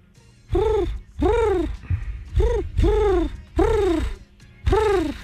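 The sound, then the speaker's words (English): A human voice imitates a dove, giving six rounded, hooting coos in a steady rhythm. Each swoops up and falls away, fairly loud, with short pauses between them. “That's a dove.”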